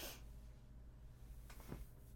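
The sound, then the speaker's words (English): A few short, soft nasal sniffles, one at the start and two more close together near the end, over a quiet, low background hum. “And he, like, kind of sniffles a bit.”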